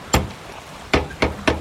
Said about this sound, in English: I grab the big gargoyle-shaped door knocker and...